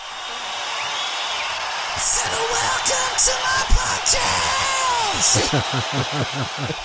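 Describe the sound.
Canned crowd cheering: a steady, loud roar of many voices with scattered yells and whoops rising over it, swelling in brief bursts throughout.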